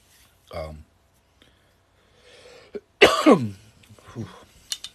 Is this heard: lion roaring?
no